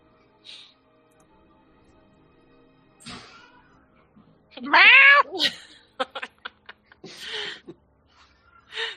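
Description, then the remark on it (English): From a distance, a cat lets out one long, rising-and-falling meow, loud and clear, followed by a few short clicks and a breathy, raspy yowl, with soft scuffling noises before and after. “From the distance. Cats are crazy. Cats are chaos.”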